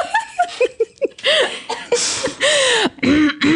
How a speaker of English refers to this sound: Oh, I were thinking about how much you love my coughing fit.